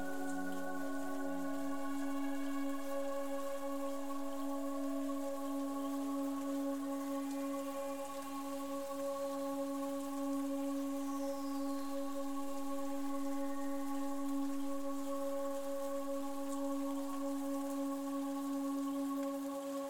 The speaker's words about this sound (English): Hear the rain. Rain has a soothing effect. to help you relax even deeper.